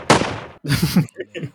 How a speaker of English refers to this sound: Gunshots.